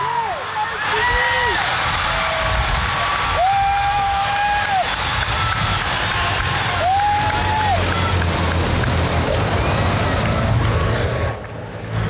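A loud, steady rush of passing vehicles and wind-like noise under a cheering crowd, with rising and falling whistle or horn tones sounding a few times as the Tour de France peloton, with rider Philippe Gilbert, goes by.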